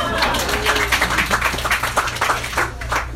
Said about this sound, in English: And now, just clap if you've ever been catcalled before.